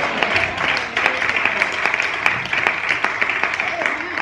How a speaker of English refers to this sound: And you ought to be happy. And if you're happy today, you ought to clap your hands.